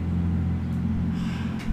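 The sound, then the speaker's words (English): A car engine runs outside with a steady, low idling rumble, then a faint rise in noise near the end as it starts to pull away. No voices. “What if I were to tell you that not only are we in the middle of a podcast that you pressed recording on and started a bit in which my car is running outside, I told you that I actually did that.”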